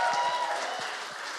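A crowd applauds after hearing that Art Co-working was named the best co-working space in London for charity startups and social enterprises, with steady, dense clapping that stays fairly loud and even across the short stretch, with no voices standing out.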